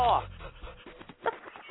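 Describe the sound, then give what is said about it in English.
A person imitates a dog panting, producing short, breathy rhythmic huffs, opening with a louder voiced burst before settling into quick quieter pants. “I said all you've got to do is lie there and pant.”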